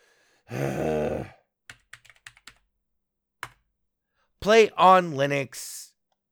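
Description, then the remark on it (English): A short burst of light, irregular key clicks from a computer keyboard, with a single stray tap after, set between a voiced exclamation and a brief stretch of talking. “Whoa, keyboard shift.”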